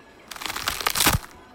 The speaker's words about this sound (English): You hear crackling of bone. And she pulls out a brilliant blue gem, handing it to you, Flint.